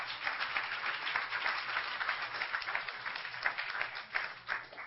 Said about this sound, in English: Do you believe it? Clap your hands if you believe it.